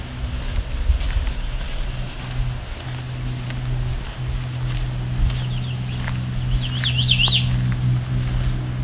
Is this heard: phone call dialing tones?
no